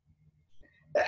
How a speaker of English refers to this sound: excuse me. That was an embodied sneeze.